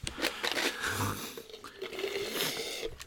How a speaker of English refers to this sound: To shaking ice into the microphone.